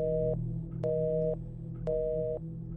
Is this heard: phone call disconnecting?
yes